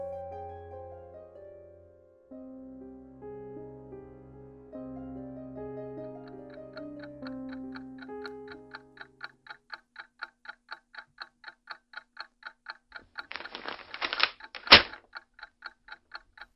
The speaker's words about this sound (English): leave the clock alone and put down that paper.